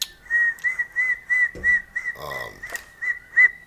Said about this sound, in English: Nah, that was just me. Is some whistling coming too? Some song playing. Where is it coming from? Either your daughter or outside. But I was just whistling to the people.